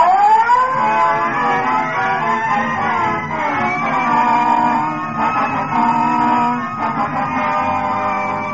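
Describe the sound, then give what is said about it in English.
A police car siren wails loud as the car sets off on a call, its tone rising at the start and then holding a high, wavering pitch for several seconds over a steady engine rumble. “Red light siren. Let's go.”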